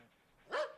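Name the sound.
dogs barking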